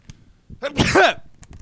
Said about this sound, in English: I think I sucked it up in my sneeze, like the power balance, you know?